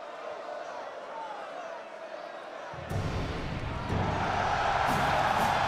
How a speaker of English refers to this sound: And now, 18 years after the highlight of his career, after dealing through the doldrums of WCW, a shitty run in WWE, the crowd is still chanting for Goldberg.